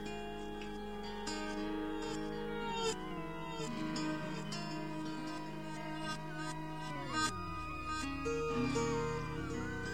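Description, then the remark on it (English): Many cats meowing at once, their overlapping cries layered into a dense, steady, chord-like wall of sound with sliding pitches. The sound is loud, with no talking. “So I rounded up a couple of cats from here and there in a group, and I said, let's do this.”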